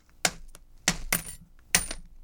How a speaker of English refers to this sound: I think it just sounds like I'm throwing coins on top of a Snyder's of Hanover bag of pretzels because I am.